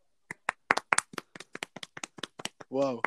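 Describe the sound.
Roughly a dozen sharp, crisp hand claps in a quick, slightly uneven rhythm, followed right after by a short voiced exclamation from someone.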